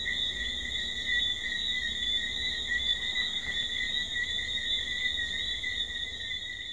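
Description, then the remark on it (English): A dense, unbroken chorus of tiny tree frogs calling together, a steady high-pitched trilling drone that fills the air at an even volume throughout, with no voices. “They're tiny tree frogs, and you can barely see them, but they are everywhere.”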